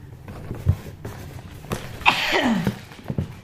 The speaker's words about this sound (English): Excuse my sneezes, people.